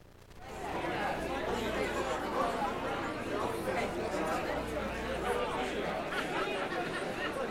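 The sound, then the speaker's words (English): A crowd of people chattering in the studio of radio station KUHS LP Hot Springs 102.5 FM, many overlapping voices blending into a steady, loud hubbub that rises in after a brief quiet moment and continues without a break. “I just suddenly got a big crowd of people in here again.”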